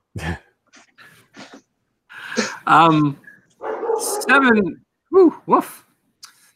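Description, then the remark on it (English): A household's pet dogs bark excitedly in a rapid series of loud bursts, with a few quieter yips and short pauses between volleys. “So, and my dogs are going nuts.”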